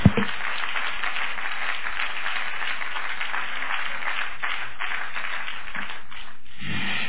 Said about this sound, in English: Clap your hands and love the Lord right now.